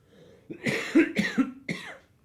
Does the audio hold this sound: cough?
yes